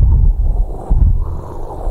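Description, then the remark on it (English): A voice imitates the howling wind of a storm at the Sea of Galilee with a low, breathy, rushing whoosh that swells and dips for about two seconds, fairly loud and unbroken, with no words. “And I opened the door and looked out on the balcony and here's this wind just blowing.”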